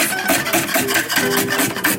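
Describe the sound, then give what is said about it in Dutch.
A knife cutting onions on a board while preparing a naan tuna melt: a steady run of quick crisp strokes, about four per second, each a short raspy burst, fairly loud with no talking. “We gaan eerst de uitjes snijden.”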